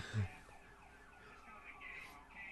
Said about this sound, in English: He's considerate that he puts the siren back on, don't you think?